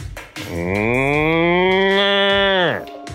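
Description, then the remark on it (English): A person's voice imitates a Trinidadian cow's moo: one long, loud call that rises in pitch, holds steady for about two seconds, then drops away abruptly. “But I've always thought the cows, or at least Trini cows, they make a sound that's a lot more like”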